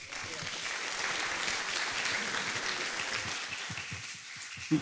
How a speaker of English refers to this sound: I think we've asked so many good questions, and I want to thank all the participants here who came to this, to our event today. I want to give you all a round of applause.